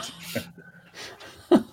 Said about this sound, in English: Yeah, he's really snoring away here.